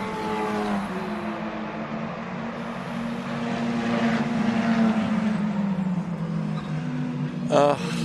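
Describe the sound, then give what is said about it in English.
Sports Car Championship Series race cars roar past during practice session one at Mosport (Canadian Tire Motorsport Park), Canada, their engines droning and shifting pitch in a sustained, loud wash, with a sharp burst as one passes near the end. “This is the Sports Car Championship Series practice number one. These are the cars I love to hear.”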